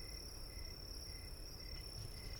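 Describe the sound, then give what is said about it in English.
A steady, high-pitched cricket chirp, used as a made-up buzzer noise, drones on without a break for a couple of seconds, with a thin bright tone over a low rumbling background and no voices. “That's my new buzzer noise that I invented.”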